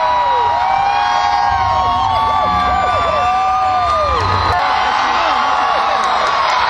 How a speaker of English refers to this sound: She comes out on the stage as you can hear the crowd going crazy over her, dressed in a big look like a robe or something.